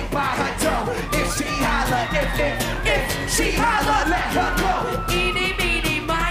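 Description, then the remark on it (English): Loud, dense concert noise with a crowd roaring over music, and a high-pitched scream from a girl cutting through the din near the front of the mix. “Did you hear the girl scream?”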